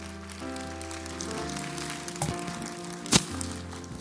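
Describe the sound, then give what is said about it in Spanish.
A church audience applauds the Lord steadily after a prayer, a dense, rain-like patter, with sustained keyboard chords playing underneath and one sharper knock near the end. “¿Le puede dar un aplauso al Señor?”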